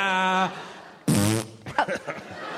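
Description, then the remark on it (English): A buzzy fart sound effect plays twice: a steady blat, then a louder, raspier burst after a short pause, followed by brief voices and a chuckle. “That's one of the fart noises.”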